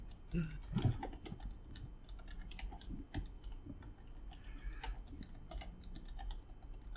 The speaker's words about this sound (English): Hold on, I'm typing. You guys can talk. I'm watching the type.